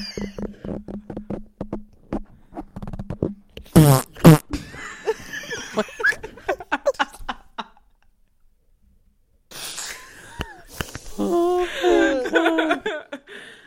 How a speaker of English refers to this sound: you shouldn't fart into the microphone.